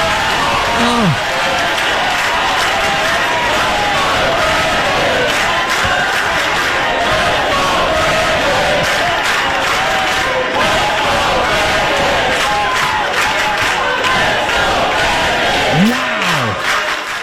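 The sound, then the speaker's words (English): A large crowd roars continuously, a dense wall of cheering, shouting and whooping that stays loud and unbroken throughout, with occasional individual yells rising above the din. “And the crowd going wild.”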